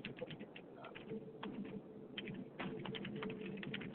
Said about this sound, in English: I'm typing this down to make sure that we get this out on Facebook